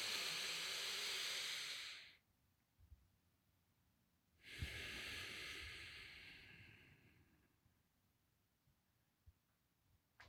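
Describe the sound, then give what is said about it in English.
Two long, slow breaths, each a broad airy rush that swells and fades over a few seconds, separated by a quiet pause. The breathing sounds deep, with no talking. “Be present. You're here. You're alive. Keep breathing.”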